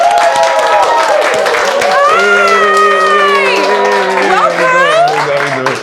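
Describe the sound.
A large audience claps loudly and steadily, with cheers and high whooping voices rising over the dense wash of applause for about six seconds.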